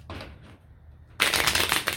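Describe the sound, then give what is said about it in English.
A deck of love cards being shuffled during a card reading, a brief riffle, a short pause, then a louder continuous burst of crisp, rapid card flutter lasting about a second. “And you see me just shuffle that and then it stopped.”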